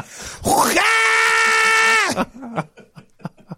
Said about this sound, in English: Coming up next, sounds you'll never want to hear again. That's a guy who starts to hawk a loogie, but then is stabbed in the leg.